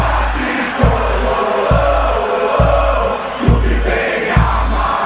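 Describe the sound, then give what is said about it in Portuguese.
A massive crowd of São Paulo football supporters chants loudly at the Morumbi stadium, a dense, unbroken roar of voices driven by a steady low thump recurring about once every second. “Foi o grito da torcida do São Paulo no Morumbi, hein?”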